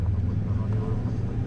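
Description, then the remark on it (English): A steady, loud airplane engine drone, low and even, with a constant rumbling hum that stays unchanged throughout, like the noise inside a cabin in flight. “So I get on a plane and travel to the other side of the world.”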